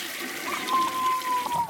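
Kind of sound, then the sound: household object, toilet flushing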